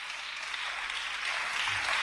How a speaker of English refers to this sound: Praise the Lord. Clap your hands for merry go round.